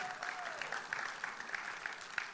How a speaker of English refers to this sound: So why don't they come up this morning? Let's give them a hand.